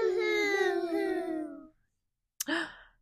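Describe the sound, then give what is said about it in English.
A voice mimics exaggerated boo-hoo crying: a long, wavering wail that slides downward in pitch, then a pause and a shorter sobbing gasp at the end. “Noah had just started to snore when a loud boo-hoo woke him up with a jump. Make a boo-hoo sound.”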